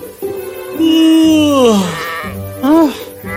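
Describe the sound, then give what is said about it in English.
Sheep bleat: one long, wavering bleat that sinks in pitch, then a shorter one after a brief pause, with lower overlapping calls from the flock. “Somewhere on a lofty mountain on the other side of the world from where you are now, sat a greedy shepherd under a tree, surrounded by his flock of sheep.”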